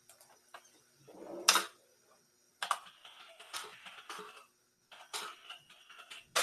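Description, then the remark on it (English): Bursts of computer keyboard typing as cast members' names are looked up, quick clicky keystrokes in uneven flurries separated by brief pauses, moderately loud, with no voices. “I am typing things in, if you were wondering.”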